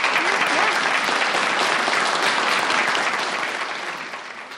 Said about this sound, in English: Clap it up